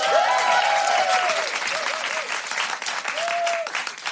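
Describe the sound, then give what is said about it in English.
An audience claps steadily for about four seconds to welcome the evening's guest, author of a book called The List, a dense, even wash of applause with a few high whoops or whistled cheers rising over it near the start and again toward the end. “Big round of applause”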